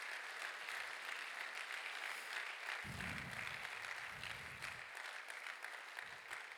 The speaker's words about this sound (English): Would you clap hands to the Lord?